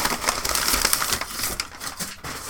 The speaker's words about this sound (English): Oh, some brown paper, listeners. Obscuring the face of the clock that I know is inside. Let me just lift up the brown paper.